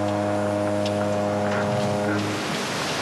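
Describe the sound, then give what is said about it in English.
A racing motorboat engine roars with a steady, buzzing drone, then the motor cuts away after about two seconds, leaving a rushing wash of water noise. “The only problem that I see, mm-hmm, is that this year it may be the Red River Boat Racing.”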